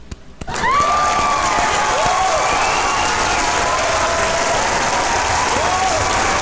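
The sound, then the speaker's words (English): Loud, sustained, full-blown applause from a crowd, following the announcement of 007 as winner of a best 90s video game vote, starts abruptly and stays steady, with a dense wash of many hands clapping and some faint whistles or cheers rising over it. “It's definitely that's not. That's like a full blown applause.”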